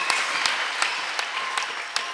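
A church audience claps for the Lord in a steady, even rhythm, sharp hand claps landing roughly three times a second over a dense wash of scattered clapping. No voices are heard.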